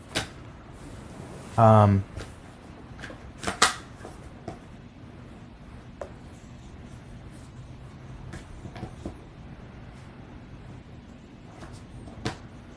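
Handling sounds as an iPad tablet is snapped back onto its keyboard case: one loud clunk, then a few sharper clicks and light taps spread out over otherwise quiet background noise.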